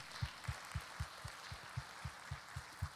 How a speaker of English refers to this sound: Come on, give Jesus a hand clap of praise.